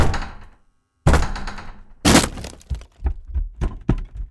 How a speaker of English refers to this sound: He had been watering them and ensuring they had adequate heat from the lamps lining the attic walls and ceiling when the front door of the house was suddenly kicked in.